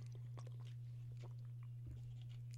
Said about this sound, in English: Let me get a swig of water right now because I don't want to not talk and have dead air.